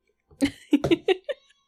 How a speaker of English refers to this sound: The podcat. Pod kitty. He's like, meh, meh.